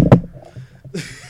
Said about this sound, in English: Is that you're knocking on wood? Yep.